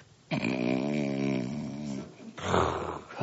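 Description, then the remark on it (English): A fairly loud snore from Boaz, lying asleep by a pile of grain: one long, droning, rumbling breath, a brief pause, then a rougher, breathy snort. No one speaks. “That's Boaz snoring.”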